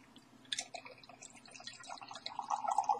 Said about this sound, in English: Let me pour.